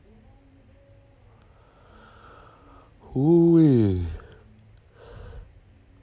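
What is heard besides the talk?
yawning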